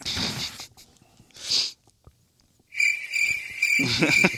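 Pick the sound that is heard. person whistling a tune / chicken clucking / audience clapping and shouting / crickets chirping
crickets chirping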